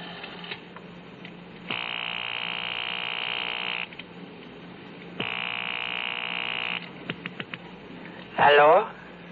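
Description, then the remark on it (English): Two long, buzzing ring tones sound through a telephone line on a call made from a payphone at a gas station on a corner, each about two seconds with a pause between, followed by a few clicks as the call connects and a voice briefly answers. “I had a phone call to make, the number I'd gotten off the card at Rothman's just before I'd been picked up.”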